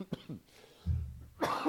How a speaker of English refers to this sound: God, pardon me. I'm still dealing with a lingering cough after being sick. It's just the last couple of weeks. It's annoying.